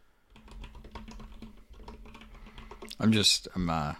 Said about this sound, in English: I'm putting together my case, so give me a bit. You're typing up a essay over there.